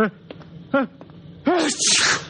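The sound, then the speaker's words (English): A person with a cold sneezes: a few short, rising breaths build up before one loud, explosive sneeze with a hissing burst of air at the end. “My eyes just water, my nose runs, and I sneeze because I'm essentially a masochist.”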